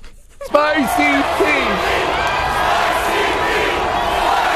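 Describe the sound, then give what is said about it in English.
A large crowd suddenly roars to life, voices rising together in a loud chant of a performer's nickname as he reaches the stage, melting into a steady, dense wall of cheering and shouting. “Well, there's the crowd chanting it, and then when he gets to the stage, he's like, "I'm gonna chant my own nickname."”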